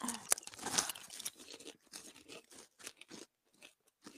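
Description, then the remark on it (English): A loud crunching bite into a crisp chocolate snack, followed by a few seconds of irregular crunchy chewing that gradually softens. “This one's really crunchy.”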